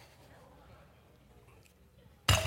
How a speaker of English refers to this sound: Ooh, look at that. That is what happens when a hammer comes down on something soft, right?